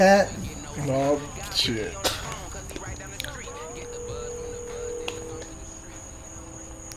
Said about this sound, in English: Hear the crickets in the background?